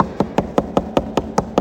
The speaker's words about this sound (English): I'm going to keep knocking until you give it to me.